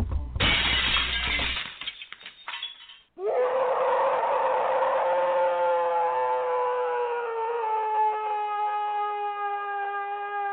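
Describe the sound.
After a couple of seconds of clattering, ratchety noise, a person lets out one long, loud, sustained howl that holds steady and slowly sinks in pitch for about seven seconds.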